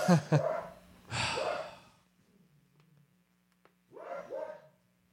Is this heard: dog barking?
yes